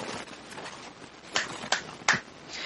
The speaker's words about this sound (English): Okay, so shall I just clap my hands again and we can start?